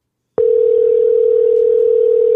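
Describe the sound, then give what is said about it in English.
A single steady telephone ringing tone on an outgoing call sounds for about two seconds, a loud, unbroken electronic hum that starts abruptly and cuts off cleanly, with no voices. “It's ringing.”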